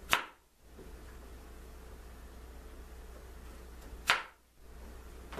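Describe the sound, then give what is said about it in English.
A knife dicing potatoes for lemon pepper fried diced potatoes: two sharp, crisp chops against a cutting board about four seconds apart, each with a quick bright attack over a steady background hiss. No one speaks. “You can dice them to the size that you want.”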